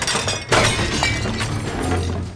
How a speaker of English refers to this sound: Kono knocked the bowls off the table. Tadame looked at the mess, teeth grinding in the back of her head.